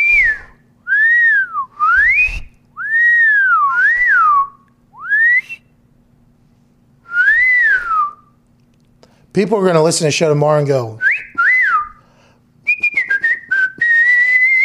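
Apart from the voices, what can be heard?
person whistling a tune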